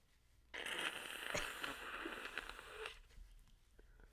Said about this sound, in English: I'm going to now blow my nose. This is how you blow your nose.